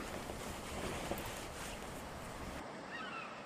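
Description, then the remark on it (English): Waves on Lake Sanity lap steadily against a sandy shore, a continuous soft wash of water with a breezy hiss and no distinct individual splashes, heard alone without any voices. “I was thinking of yonder waves.”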